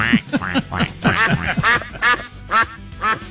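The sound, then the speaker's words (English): A duck quacks repeatedly, about eight loud, nasal calls in quick, uneven succession, with no voices present. “Quack. What's up, doctor?”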